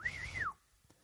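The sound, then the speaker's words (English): A man whistles at his caged birds: a single clear whistle, a bright sustained tone that wavers slightly and slides downward at the end, lasting about half a second before falling quiet. “He's whistling at them.”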